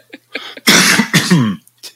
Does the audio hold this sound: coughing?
yes